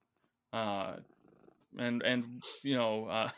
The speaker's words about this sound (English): Is that a cat purring? Yeah, sorry.